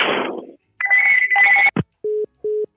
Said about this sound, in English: All right, man, I got the other phone ringing. Yeah, I gotta go.